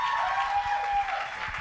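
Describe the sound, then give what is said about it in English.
An audience claps steadily, a dense, continuous wash of many hands with no pauses, and a faint sustained tone running beneath it for part of the time, as a guest speaker is welcomed and comes up. “Come on, keep on clapping as he comes.”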